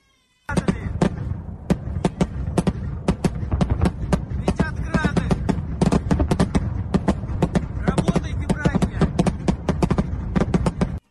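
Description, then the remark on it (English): Sustained gunfire, dozens of sharp, loud shots crackling in rapid, irregular bursts for about ten seconds. Faint voices can be heard beneath the shooting. “You know, I don't know if you've ever been in gunfire, but when we talk about this on a radio show or a television show or in company or in a bar or wherever we debate things like this or the Senate, it almost sounds like a chess game.”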